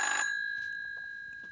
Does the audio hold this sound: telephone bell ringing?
yes